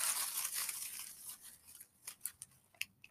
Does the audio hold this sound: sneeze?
no